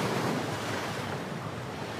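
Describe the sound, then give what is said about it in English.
Loud, continuous rush of churning water and surf crashing over a speeding boat, drenching the people aboard, a steady roar of spray with wind buffeting the microphone, no voices present. “Oh, they're flooding that shit. It washed them all up.”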